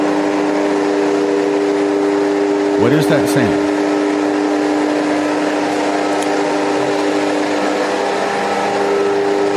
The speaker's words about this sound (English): Americans have never heard this sound before, because this is the sound of subway bomb shelter doors closing. Yesterday, both Ukraine and Russia has tested their subway blast doors and civil preparations for nuclear war all over their nation.